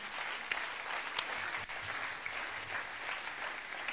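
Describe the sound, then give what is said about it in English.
An audience applauds steadily throughout, a dense wash of many hands clapping at once with no pauses, fairly loud, with no one speaking over it. “Those who are clapping, you are great.”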